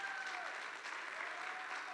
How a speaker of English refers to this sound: Thank you for 23 years of faithful service in God's house. 23, I thought we would get more claps than that.